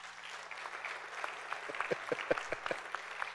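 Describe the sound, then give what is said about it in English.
An audience at a church breaks into steady applause after hearing that the speaker's brother-in-law was baptized. Many hands clap in a dense, crackling wash, with a few sharper claps standing out, building slightly louder toward the end. “Now, I hope you're applauding for, you really need to be applauding for me, because he's a big guy, and I got him down and back up all by myself.”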